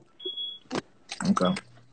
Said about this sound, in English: I'm finna step out this car and give me some fresh air.